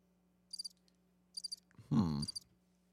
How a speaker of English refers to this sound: You got the cricket noise on there, too, for the next one? Hold on for it.